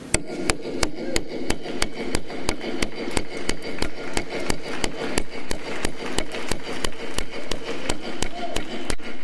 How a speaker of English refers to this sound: Let's nail it down. Are you with me on that? All right. He's got a little hammer here, and thank you. And so let's just nail it down.